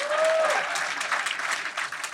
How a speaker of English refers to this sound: Your ball got a round of applause.